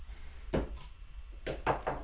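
A beer bottle cracks open: a sharp metallic pop with a short airy hiss, then a few quick clinks and clatters of glass. No one speaks.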